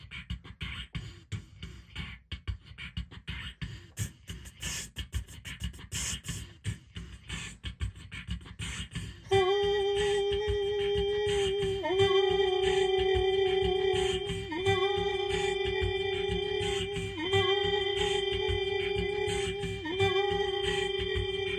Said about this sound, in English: No, that didn't work. Hold on. We need a better beat than that. No, hold on. There we go.